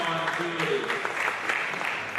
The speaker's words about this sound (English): And I want to commend everybody else who stood up and got in the line. Can we clap it up for them? Yeah. All right, clap it up.